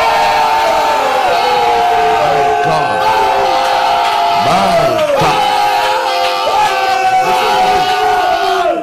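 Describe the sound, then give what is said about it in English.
A large audience shouts loudly all at once, a dense, sustained, resounding roar of many voices with rising and falling cries layered over one another, overwhelming, while a single voice calls out briefly. “My God, shout a resounding life shouting.”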